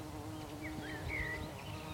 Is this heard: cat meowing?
no